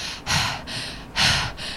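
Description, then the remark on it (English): A person imitates a friend's heavy, loud breathing through the mouth: two strong, breathy inhale-exhale cycles in a steady rhythm, airy with no words spoken. “So, it was a little while ago, but one of my friends, I'm not sure if she was sick or anything, but she was just a mouth breather and she breathed with her mouth like this.”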